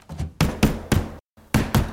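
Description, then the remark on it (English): Firm knocking on a house door: three solid raps, a brief pause, then two more, each hit ringing with a hollow, resonant thud. “Who is it? You open the damn door or I'll open it.”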